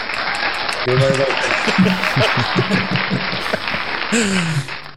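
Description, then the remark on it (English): Steady, dense, loud clapping from a group fills the whole stretch, with a few voices calling out or cheering over it before it fades at the end; a round of applause for a new producer. “So that's our new producer, everyone. Round of applause.”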